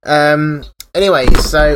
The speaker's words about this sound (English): I just almost knocked my microphone flying there.